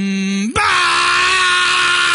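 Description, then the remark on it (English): A voice imitates a car muffler falling off: a brief humming drone snaps abruptly into a loud, harsh, buzzing rasp that holds steady for nearly two seconds. “Yeah, that's my impression of a muffler falling off.”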